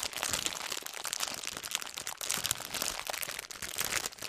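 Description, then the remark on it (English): A plastic bag of cotton candy grapes crinkles and crackles continuously, a steady stream of sharp, papery rustles and crunches that barely let up, with no one speaking. “It's just a plastic bag.”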